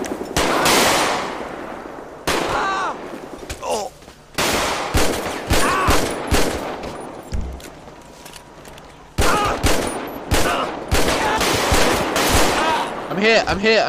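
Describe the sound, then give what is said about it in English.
Loud bursts of gunfire fired at a brawl, many sharp cracks fired in rapid volleys with brief pauses between, rising over a dense background of commotion and shouting voices. “Fired at the brawl.”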